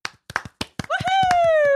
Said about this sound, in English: I'm like, have we ever clapped a guest in? Yeah, we always do. Oh, we do? Yeah. Oh. We should. If we don't, we should. We do. Every time I do. Maybe that's why I'm always uncomfortable, because it's just me clapping.